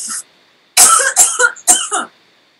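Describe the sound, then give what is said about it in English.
A loud coughing fit from a person choking: a brief hiss, a pause, then a rapid run of four or five harsh, choking coughs in quick succession, with no talking. “I'm going to choke, hold on 1 second.”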